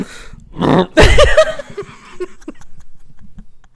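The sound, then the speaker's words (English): A loud burp erupts after a short rough vocal sound, followed by a trail of quieter clicks and murmurs. “But when you burped at me?”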